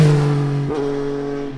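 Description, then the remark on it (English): The engine of an all-new Dacia Jogger seven-seater car hums steadily, its low drone briefly rising in a quick rev partway through before settling back to an even idle. No one speaks. “I'll be testing out the all-new 7-seater Dacia Jogger.”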